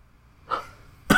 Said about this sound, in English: I'm sorry for editing, because you're going to have to edit out my cough.